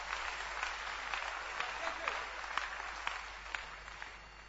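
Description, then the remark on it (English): An audience claps hands for the Lord during a sermon, a dense, steady wash of applause, many overlapping claps at moderate loudness with a few sharper, louder claps standing out, continuing throughout. “Clap your hands for the Lord.”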